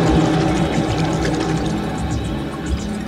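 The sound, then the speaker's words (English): A steady, loud rush of water as a geyser of water explodes through a roof, a broad churning wash with scattered splashy bursts, continuous with no voices. “They grabbed onto the rope and hoisted themselves up hand over hand, just as a geyser of water exploded through the roof.”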